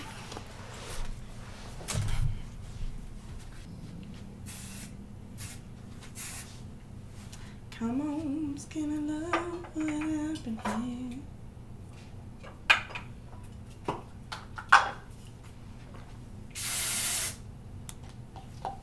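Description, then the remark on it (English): Several short hissing bursts of hair texture spray, the longest near the end, with a person speaking briefly in the middle and light clatter and rustling in between. “Just us not talking in the hairspray, spraying, or whatever the shit this shit texture is.”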